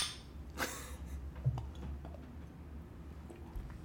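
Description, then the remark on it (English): Beer bottles clink together in a toast at 2:14 PM on the West Coast, a sharp bright knock followed by a softer tap, fairly quiet over a low background hum, with no one talking. “It's early, good enough for a beer. Cheers. Cheers.”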